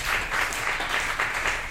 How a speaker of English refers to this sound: Let's give a little smattering of applause.